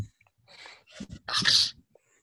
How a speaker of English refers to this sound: In the background, my dog is like crunching food like very loudly. Crunchy, crunchy. Hungry puppy.